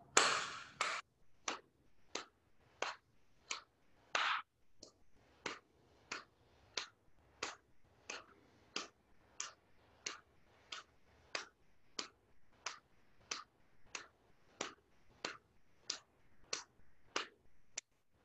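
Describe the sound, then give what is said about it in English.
Sharp hand claps, made by a yoga instructor to pace a breathing exercise, repeat at a steady, fairly quick pace, roughly three every two seconds, for about thirty claps. They are crisp, with nothing else but faint background between them. “So start by letting your belly hang loose and then breathe to the sound of my clap.”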